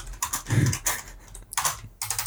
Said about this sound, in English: You're typing like Rich. Dude, I am. We should probably misspell stuff so he understands.